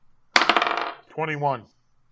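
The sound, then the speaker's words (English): A twenty-sided die (d20) clatters and rattles across a hard tabletop for about half a second, fairly loud, then settles; a short vocal groan follows right after. “You need to fire that d20. It has not helped you.”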